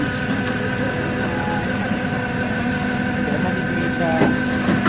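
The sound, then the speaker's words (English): A heavy tow truck engine drones steadily as a van is moved onto the tow truck, its low rumble and faint mechanical whine continuous throughout, with a brief scrape or clank near the end. “Almost at 11 minutes into them trying to move this van onto the tow truck.”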